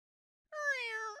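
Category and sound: animal, cat meowing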